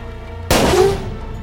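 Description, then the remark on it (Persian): A single loud gunshot cracks out sharply as a gun aimed at the Shah's heart is fired. It then rings and decays into a short echoing tail over a low background hum. “او دائماً به سمت چپ و راست خم میشه و ناصر که اوضاع رو اینطور میبینه، اسلحه رو به سمت قلب شاه نشونه میگیره و ماشه رو میچکونه.”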